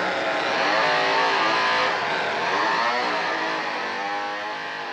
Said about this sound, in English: And then he just goes back to just chopping up old Kirk. Yeah. Starts up the chainsaw.